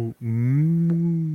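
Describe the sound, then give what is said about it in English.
A cow gives a single deep, drawn-out moo after a brief grunt-like start, loud, with its low droning tone holding steady for over a second. “What do they call the cow?”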